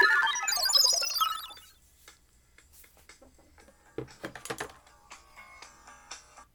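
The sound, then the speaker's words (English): An electronic alarm rings out in a bright, high-pitched burst for about a second and a half, then cuts off, leaving scattered soft clicks and taps. “That's an alarm that goes off.”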